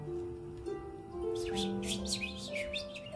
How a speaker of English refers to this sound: bird chirping noises. A pleasant atmosphere of birds chirping. Melodic notes that fill the air and match the vibrant colors of the castle's exterior walls. And yet, the more you listen, the more something feels off about it.